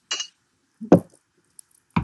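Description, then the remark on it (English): Glasses of hazy IPA beer clink together in a toast: a few short, bright knocks spread unevenly over two seconds, with one faint high ting in between. There is no talking. “Cheers, guys. Get that in you. Cheers. Ding.”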